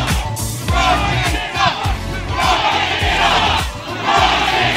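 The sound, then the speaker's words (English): A large rally crowd chants in unison, voices rising and falling in a steady repeated rhythm, loud and continuous with a dense, roaring texture throughout. “What a crowd. I don't know what it is about his followers and chants, because I don't see people chanting in the same way at, like, the Biden rallies.”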